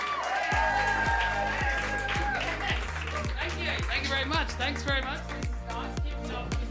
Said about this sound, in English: Think Q&A with a comedy twist where the audience are the panel of experts. And that's some cheering.